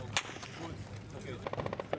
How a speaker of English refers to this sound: You can hear that gunfire in the distance. The Israelis are trying to engage anyone who tries to ambush their forces.